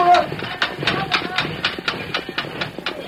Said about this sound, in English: He threw the brake, gears clashed, and the train came to a reluctant stop.